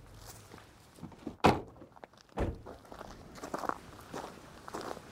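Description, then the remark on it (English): Footsteps walking from a gravel road to the edge of a lake in wetlands: a handful of uneven steps crunch over the gravelly surface, with two sharper, heavier thuds standing out among softer scuffs, and no one speaking. “We walk to the water's edge.”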